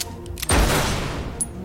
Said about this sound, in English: But their gunfire does little to nothing to the angry Kodiak, who stands up and roars at them.